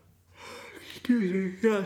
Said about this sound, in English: Excuse me, yes. Oh, Jesus. I had to yawn, I'm sorry.